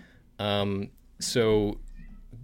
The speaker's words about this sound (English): Goodness, my cat just meowed from the other room. I'll play with you later. Hi, Nemo.